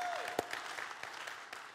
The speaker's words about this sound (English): So you at least clap one time.